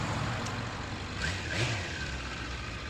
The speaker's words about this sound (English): Mike's motorcycle's gorgeous.